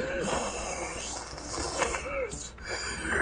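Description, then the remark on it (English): Labored, raspy breathing through a mask, each breath swelling into a steady hiss that fills the whole moment with a harsh, airy rush. “You hear, like, this haggard breathing through a mask and kind of, like, a hissing.”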